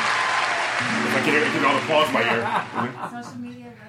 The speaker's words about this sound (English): I can hear the applause in my ear.